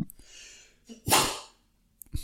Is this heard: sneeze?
yes